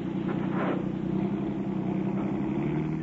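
A car engine rumbles steadily, a low, even mechanical drone that holds at a constant loud level throughout, with no voices, as the car drives forward over a man lying in front of it.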